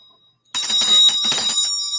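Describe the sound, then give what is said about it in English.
A small handheld bell with a fish on it rings brightly and continuously after a brief silence, its clear metallic tone rapidly repeating, loud, with no voices present. “This has a fish on it, but this bell right here.”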